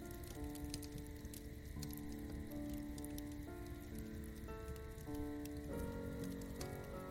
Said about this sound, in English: But you can hear the sounds of the flames in the fire pit in front of you, as the crackling and popping of the fire fills the soundscape.